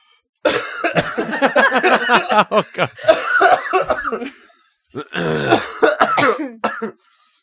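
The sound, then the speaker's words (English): A person fakes a dramatic coughing fit: a long string of harsh, rapid coughs and throat-clearing, a brief pause, then a second raspy burst, loud. “And then his dad died of a coughing fit”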